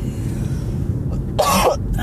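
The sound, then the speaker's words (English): A sharp, harsh cough from someone choking on a peanut bursts out, followed a moment later by a brief second catch in the throat, over a low steady background rumble. “Peanut is getting to me. Water, water. I'm gonna choke.”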